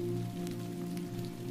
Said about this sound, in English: The cool, briny mist slips beneath a clear bubble umbrella that protects you from the steadily falling rain.